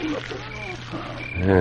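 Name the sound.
loud snoring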